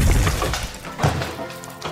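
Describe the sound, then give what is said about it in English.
Bones crack and crunch as a body is slammed into a wall: a few harsh, sharp bursts, with a loud smashing impact at the start, another around the middle and a last one at the end, against a gritty rumbling background. “And, like, you can hear his bones cracking.”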